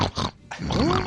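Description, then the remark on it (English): A person imitates a pig with a couple of loud nasal grunts, a brief pause, then a longer squealing oink with a rising-falling pitch. “But now do I do a pig thing too?”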